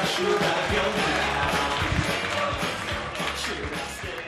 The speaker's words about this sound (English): So keep that energy up. Start clapping. Whooping. Slapping your thigh if you want.